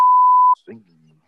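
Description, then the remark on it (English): A loud, steady censor beep tone lasts about half a second and cuts off abruptly, followed by a brief trailing fragment of a voice. “That was a beep”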